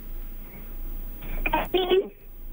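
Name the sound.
phone line breaking up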